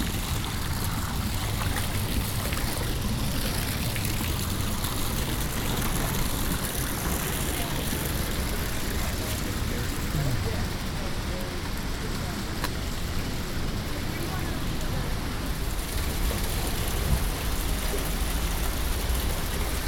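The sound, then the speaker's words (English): Steady, continuous trickling and splashing warm water fills a steam-filled hot springs cave, a dense unbroken wash of sound that stays at an even, fairly loud level throughout. “Going into the cave is definitely my favorite part of the hot springs.”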